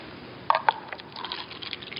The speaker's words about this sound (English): Can you hear that? What am I doing? Pouring some water.